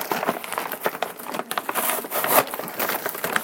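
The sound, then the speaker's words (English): A brown paper bag of yellow corn tortilla chips, bought at a health food store, being pulled open for the first time, with dense, irregular crinkling and crackling and a few sharper tearing bursts over several seconds, moderately loud with no talking. “Then I'm going to take this bag of tortilla chips. It's a brown paper bag style.”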